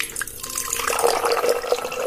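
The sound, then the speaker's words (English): Lukewarm water pours steadily into a drinking glass, a continuous bright splashing and gurgling stream that grows fuller over about two seconds, with no voices. “Set up 3 glasses of water. Glass A with lukewarm water or maligamgam na tubig.”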